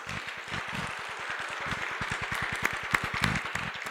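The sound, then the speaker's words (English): A church audience of All Saints East Dallas applauds steadily with dense, continuous clapping, celebrating two years of meeting weekly, joined by a few sharp whistles and cheers toward the end. The sound is fairly loud, with no talking. “Yeah, we can whistle. Let's hoop and holler.”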